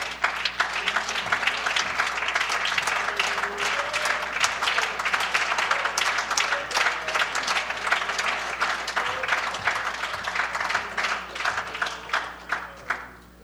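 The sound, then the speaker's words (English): An audience gives a hand clap of praise one evening, with dense, steady hand clapping that fills the whole stretch, many overlapping claps blending into a loud roar before thinning into a few scattered claps at the end. “Can we give him a hand clap of praise this evening?”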